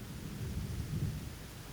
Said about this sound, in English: In Cambridge, where we were, the clouds had come and it was raining. In Kadugli, where they were, the clouds had come and it was raining.